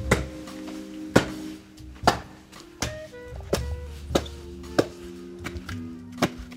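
Wood being chopped with a small axe on a patio in Kyiv, Ukraine: about nine sharp, loud whacks at an uneven pace of roughly one per second, over a faint steady tonal hum, with no talking.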